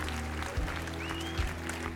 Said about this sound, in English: If you're ready for restoration, give the Lord a great big clap offering of praise.